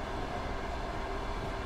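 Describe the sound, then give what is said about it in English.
A steady, loud rumble of a freight train rolling past, a continuous dense roar of wheels and cars with no break and no voices. “Who among us hasn't gone out for a nice public nap only to be bisected at the waist by a freight train?”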